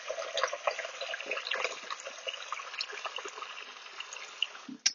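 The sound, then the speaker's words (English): Running tap water pours steadily into a dog's water bowl for the dog Wolfie, a continuous splashing rush with small irregular spatters, then it stops abruptly near the end. No one speaks. “All right, here's Wolfie's water.”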